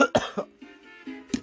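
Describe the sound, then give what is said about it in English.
A burst of harsh, wet coughing after taking a hit of Diamond OG weed: several hacking coughs in quick succession, then a rattling, phlegmy exhale and one more cough, fairly loud with no talking. “That ain't a dry cough, I can tell you that.”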